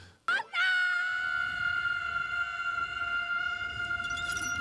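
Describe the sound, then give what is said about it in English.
A woman with scream powers in a film lets out a piercing, powerful scream that holds one steady high pitch for about four seconds. It is loud, and it bursts in abruptly right after a brief short cry. “Oh, she's got some scream powers.”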